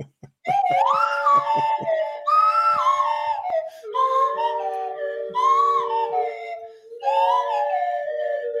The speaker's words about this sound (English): What is that on? That's on one of those little toy flutes that has the little slide on it. Yeah, it's not a recorder. What the hell is that? What's that? It's like a penny whistle with a slide.